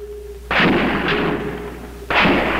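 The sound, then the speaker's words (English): Two loud, sharp rifle shots about a second and a half apart, each followed by a long rumbling tail, with a faint steady tone humming beneath before the first shot; sniper fire by Charles Whitman from the observation deck of the University of Texas Tower during a 90-minute gun battle. “Sirens screamed for the 90 minutes that the gun battle was in progress.”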